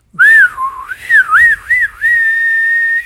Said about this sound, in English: And he got his fingers in his mouth, and he let out a mighty whistle.